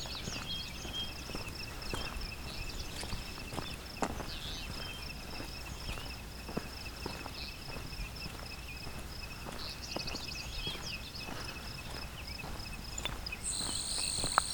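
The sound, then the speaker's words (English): A grasshopper sparrow sings a high, thin buzz that drones on steadily, almost one unbroken tone, over quiet outdoor background with scattered soft clicks and rustles. No one speaks. “even higher and even more buzzy, to the point where really it just sounds like a single buzz”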